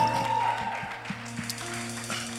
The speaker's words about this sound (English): Worship team, thank you so much. We appreciate you guys so much. Yeah, you can definitely give them a round of applause.